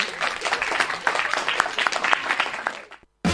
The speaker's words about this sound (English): Well, thanks a million, everybody. Big cheer before we go.